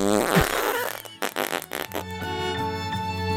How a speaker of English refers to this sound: Anyways, I feel like we're too tired to do some sort of weird thing here at the end. So sure. Fart.